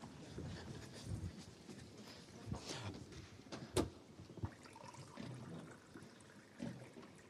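Water is poured into a glass, a soft running, splashing gurgle lasting several seconds, with a sharp clink partway through and a brief knock near the end.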